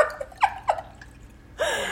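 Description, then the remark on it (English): Liquid glugs out of a bottle in a couple of quick gulping bursts, then pours steadily into a glass with a bright, splashing rush, without any talking. “You trusting me to pour this?”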